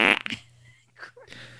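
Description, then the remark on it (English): A loud, buzzy fart sound effect bursts out at the start and quickly fades, followed by a few softer sputtering noises and a low hum. “The English translation is a little bit longer on the fart.”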